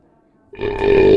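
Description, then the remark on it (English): A loud, drawn-out belch erupts during a beer tasting after a brief quiet moment, rumbling low and growing stronger toward the end, alone. “We'll be discussing and rating these beers with these suds ratings plus our signature belching sounds.”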